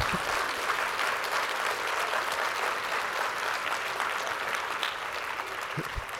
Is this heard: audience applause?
yes